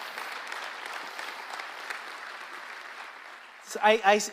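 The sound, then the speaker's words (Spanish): A church audience claps steadily in a dense, sustained patter of many hands for several seconds, applauding news of new church campuses; the applause then thins as a voice begins speaking over its tail. “Les vamos a dar un fuerte aplauso a lo que Dios está haciendo entre nosotros.”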